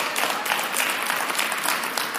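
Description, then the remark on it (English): A crowd applauds with steady, dense hand clapping, a continuous bright crackle of many overlapping claps at even loudness throughout, with no voices standing out. “Can we give the ministry, the leadership team, a hand clap?”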